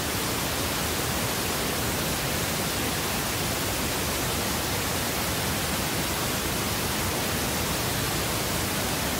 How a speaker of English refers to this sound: Let's set the pink noise at that most comfortable level. So here we go again. Here's the pink noise, and set it at the most comfortable level.